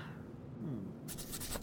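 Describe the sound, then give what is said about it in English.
A pen scratches across a small scrap of paper in quick strokes as a cipher is transcribed, the scribbling growing brighter and busier toward the end, with no voices. “If it's all right with you, I'll transcribe on the same scrap of paper.”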